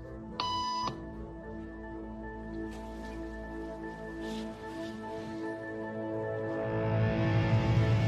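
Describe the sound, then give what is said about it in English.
A short, bright electronic beep rings out once at the start, a tone used in a hidden camera experiment where people stand up at its sound, then gives way to a steady low hum and a murmuring background that slowly grows louder. “After just three beeps, and without knowing why she's doing it, this woman is now conforming perfectly to the group.”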